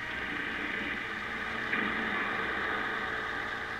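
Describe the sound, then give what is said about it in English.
A sightseeing bus engine in Los Angeles runs steadily throughout, a continuous droning rumble with an even hum and no pauses, moderately loud, with no voices. “So let's take a tour on one of these buses and see what it's like.”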